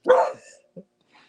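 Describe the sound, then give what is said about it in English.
A female dog gives one sharp, loud bark, followed by a brief softer yelp and then a faint trailing sound before it goes quiet. “She just barked to that.”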